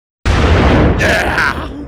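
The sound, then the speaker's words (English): A loud explosion sound effect bursts in suddenly, a single booming blast with a heavy, rumbling low end. It sustains for over a second, and a brief voice-like sound rises over its tail. “Can we get an explosion?”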